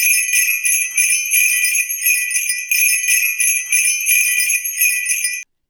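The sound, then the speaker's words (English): Bright, high Christmas bells jingle in a steady, rapid shaking rhythm for about five seconds with no voices, then cut off abruptly. “I need like bells. Maybe I will try to find a sound effect and insert it into the podcast right here.”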